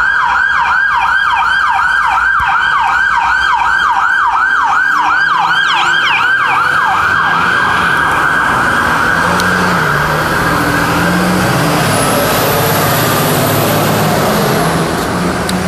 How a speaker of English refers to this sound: Yeah, perks of living in Philly. You'll hear sirens and trucks a good chunk of the day.